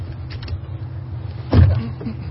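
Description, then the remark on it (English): A single sharp mechanical clunk of car power door locks engaging over a steady low engine-like hum inside the car, preceded by a couple of faint small clicks. “Power door locks, standard, of course.”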